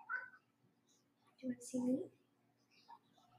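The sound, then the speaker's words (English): A cat meows in two short bursts, one right after the other, standing out against an otherwise quiet background with faint sounds at the start and end. “Oh, so you're going to come see me because Mom's here. This is Mr. Kitty. You want to see me?”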